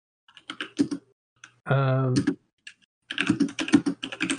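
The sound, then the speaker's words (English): Rapid bursts of clicking keystrokes on a computer keyboard, fairly loud, coming through over a voice chat, in two flurries with a short vocal sound from someone between them. “Hey, you need to stop typing or use push to talk.”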